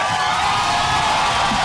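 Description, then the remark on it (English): A loud, steady roar of crowd cheering with high whoops and shouts layered on top, sustained without pause for the whole moment. “The crowd's fucking loud today, man.”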